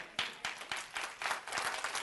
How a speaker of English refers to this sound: Now, you know what I'm going to do? I'm going to wait until everybody's clapping your hands. That's what I'm going to do.